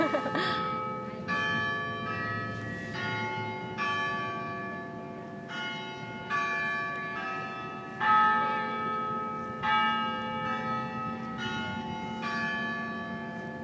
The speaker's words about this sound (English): Oops, we'll wait for the bells for a second.